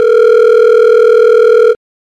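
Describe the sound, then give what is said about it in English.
A steady, loud telephone dial tone of an outgoing call holds evenly for almost two seconds, then cuts off abruptly into silence. No voices are heard. “Let's get him on the phone, actually.”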